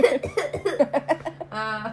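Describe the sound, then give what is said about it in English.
A loud burst of repeated coughing, about eight quick hacks in a rapid series, ending in a drawn-out, strained voiced sound. “Sorry for the cough.”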